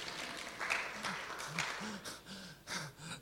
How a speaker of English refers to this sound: It was like such a pity clap. It was unbelievable.